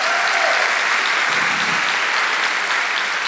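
Steady audience applause at the Sydney Writers Festival, a dense wash of many hands clapping at an even, sustained level with no voices standing out.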